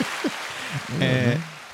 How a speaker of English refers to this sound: Thank you. Let's can we get some claps for that?